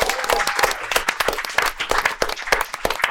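An audience applauds a guest steadily, many hands clapping in a dense, continuous patter with scattered sharper claps standing out, moderately loud throughout.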